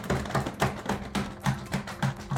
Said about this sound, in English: I have a bigger announcement. Drum roll, please.